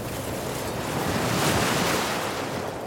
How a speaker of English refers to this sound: What Vanessa and her husband John saw was a wall of water rushing down from the Vaisingana River